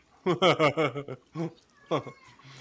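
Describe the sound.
A cat meows, a short tonal cry rising out of a stretch of muffled, indistinct talking, with a quiet background hum continuing afterward.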